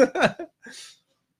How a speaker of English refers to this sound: Sorry, I ate the potatoes first before the burger. So now I have hiccups.